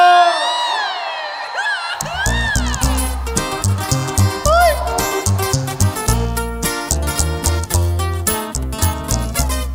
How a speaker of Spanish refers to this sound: Y el que tenga una cerveza en la mano, que se aviente un pinche grito mexicano.